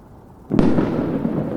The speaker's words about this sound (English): Firecrackers again? Are you kidding me? Excuse me a minute. You mother... It's 6 in the morning!